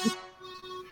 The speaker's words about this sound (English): Hit the air horn for Mr. Fingers because he cannot talk today.